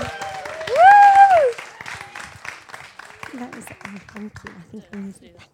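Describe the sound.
An audience bursts into applause with a loud rising-and-falling whoop of cheering, then the clapping thins out and a voice begins talking over the fading applause.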